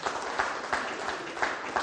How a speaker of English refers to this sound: How cool is that? Let's have a clap.